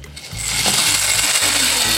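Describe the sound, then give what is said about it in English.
One pound of dry penne pasta pours into a pot of boiling water, a dense, continuous clatter of many small hard pieces rattling for about two seconds over a low, steady hum. “We're gonna do 1 pound of penne into each pot.”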